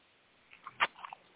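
A few crisp crunches of someone chewing popcorn, one bite louder than the rest, spread irregularly over about a second against a quiet background with no talking.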